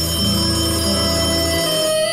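A telephone rings with a steady electronic tone that sounds continuously for about two seconds, fairly loud, with no one talking.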